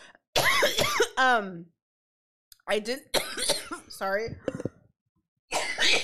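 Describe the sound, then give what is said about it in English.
Several harsh coughing bursts from a person who inhaled wrong, in quick clusters separated by short pauses, with the person briefly speaking between the fits. “Coughing. I kind of just inhaled it wrong.”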